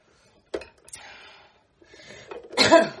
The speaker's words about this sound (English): Now I'm going to do, I'm going to remove the skewer and I'm just throwing off all the zoodles. I actually have a pile now of thin ones and medium ones.